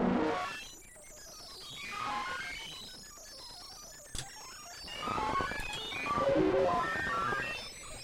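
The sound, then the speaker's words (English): Several modular synth oscillators set to square waves form a dense, buzzy cluster of tones that glide up and down in sweeping arcs, with a sharp click midway and no voices. “changed a couple to square waves.”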